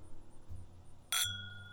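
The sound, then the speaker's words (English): A single bright clink of whiskey glasses as people go to take a sip, a sharp high chime that rings on with two steady tones fading slowly, over a low rumbling background with no talking. “And so to follow up with that, I think we're going to go ahead and take a sip.”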